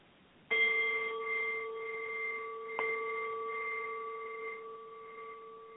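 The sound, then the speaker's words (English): A bell is struck twice, a few seconds apart, each strike ringing out with a bright, sustained metallic tone that lingers and slowly fades. No one speaks. “And as you hear the bells, just breathe love into your heart and nowness and peace.”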